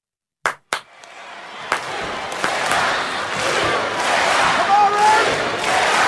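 Two sharp, loud claps ring out, then a large wrestling crowd erupts into a sustained, loud wall of chanting and cheering in a cadence made for a wrestling team, holding steady to the end.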